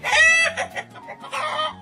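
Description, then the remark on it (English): Chicken clucking in two close, loud bursts with a short pause between, the squawky calls overlapping as if two birds are answering each other. “Two chickens who have met but don't remember the other's names.”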